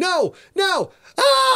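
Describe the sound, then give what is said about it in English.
A performed scream coming over a radio from a PT boat, three loud strained vocal bursts in quick succession, the first two sliding downward in pitch and the last held steady, with brief gaps between them. “Then all of a sudden a scream came over the radio from PT Boat 50.”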